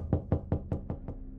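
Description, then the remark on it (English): A second series of six steady, evenly spaced knocks on a heavy wooden apartment door at 12:30 a.m., each a deep, solid thud, moderately loud, with no voices. “There came the second series of knocks.”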